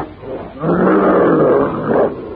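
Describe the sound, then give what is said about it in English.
A fearsome prehistoric talking ape, climbing out of a pit and swinging forward, lets out one loud, sustained roar of challenge at Tarzan, lasting well over a second, deep and rasping, with no talking around it. “Swinging forward clumsily but swiftly, the hideous features contorted with black rage, the brute roars out his challenge.”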